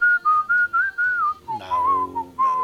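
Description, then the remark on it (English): A man whistles a bouncy pop song melody, clear, in short phrased bursts that rise and fall, with no talking over it. “That was actually him whistling, so that was pretty good.”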